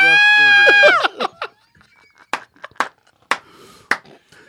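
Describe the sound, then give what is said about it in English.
A voice imitates a man's loud, high-pitched, startled scream for about a second, wavering and trembling before breaking off, followed by several short, sharp vocal bursts and brief noises. “She scared me, and I let out a high-pitched scream.”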